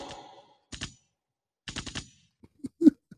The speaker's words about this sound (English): Gunshots if you feel me.